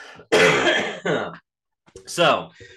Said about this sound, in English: so I'll probably cough several times during this podcast. Just a heads up there, pretty much the more I talk or the more I laugh, the more I'm gonna cough. That's pretty much the only thing that I have lingering is just that cough right there.